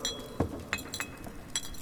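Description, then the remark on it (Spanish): Glass wine bottles clink together in a few bright, ringing taps spaced unevenly over two seconds, as a flask of The Grave wine is broken open, with a faint rattle of glass between the louder knocks and no voices. “Rompí un frasco de vino de The Grave y se lo ofrecí.”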